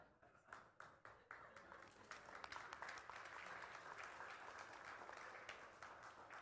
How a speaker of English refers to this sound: Thank you for that golf par applause.